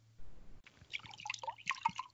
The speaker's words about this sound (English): Sorry, guys. I'm just filling up my glass with some premium 8 pH water. So it's not pH neutral. It's actually slightly on the alkaline side, nice.